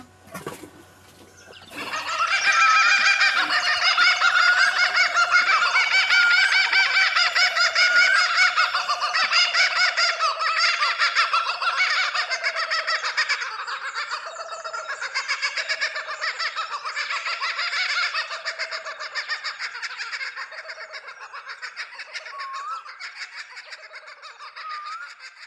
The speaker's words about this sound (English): as well as the voices of thousands of frogs, birds and some happy kookaburras.